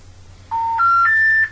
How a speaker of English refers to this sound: Because I'll say, doo-doo-doo, we're sorry. The number you've just called has been disconnected. So disconnect tones and message.